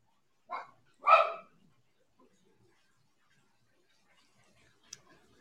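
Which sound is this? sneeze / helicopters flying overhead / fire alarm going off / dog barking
dog barking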